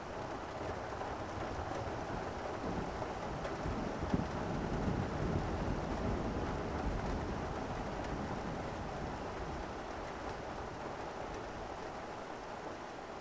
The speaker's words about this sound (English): The power of the storm blurs everything outside and makes you retreat from the covered deck into your room.